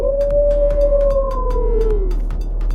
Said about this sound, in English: As you guys line up, a strange wolf materializes next to him, gives out a blood-curdling howl as it prepares itself.